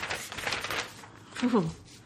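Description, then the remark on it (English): Brief rustling of a sheet of paper being pulled out, a few quick crinkly bursts in the first second, followed by a short murmured vocal sound. “I mean, let me get out my paper.”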